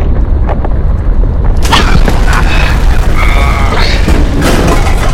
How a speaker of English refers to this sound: The rover's been knocked over.